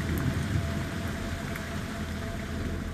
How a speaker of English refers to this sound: The air is dense, wet. It's been raining heavily overnight.